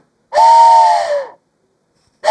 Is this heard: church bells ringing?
no